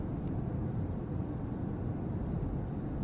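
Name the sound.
car engine hum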